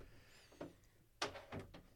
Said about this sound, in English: Uh-oh. There goes the door. Oh, door's creeping open. Door's creeping open.